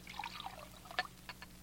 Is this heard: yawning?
no